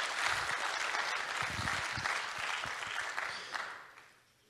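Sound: audience applauding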